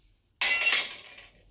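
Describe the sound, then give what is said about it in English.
Glass shatters with a sudden loud crash, followed by a bright, tinkling spray of fragments that fades over about a second. Isolated, with no voices. “Have you ever, and I know I'm going to clean myself out with this one, but have you ever broken glass?”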